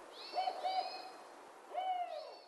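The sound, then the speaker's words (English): A spotted owl hoots three times in a short, uneven series: two hoots close together, a pause, then a third. The calls are clear, with no voices or other sounds. “Creates great hunting grounds for species like spotted owls.”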